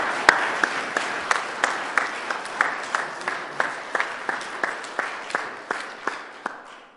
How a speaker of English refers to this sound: Let's give them a really big round of applause.